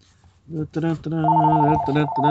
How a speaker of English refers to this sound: This just in, my phone's ringing.